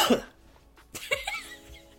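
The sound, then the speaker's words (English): A person gives a few deliberate, theatrical coughs imitating the ghost of a sad clown: a sharp breathy burst, a short pause, then a rougher, voiced cough trailing off into a low throaty rasp. “He'd just cough?”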